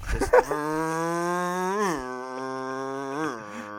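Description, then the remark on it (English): A voice imitates a car engine with a steady, buzzy low drone that swells upward in pitch twice like revving, after a short breathy start. “What if you just have as your voicemail just you making a car vrooming sound?”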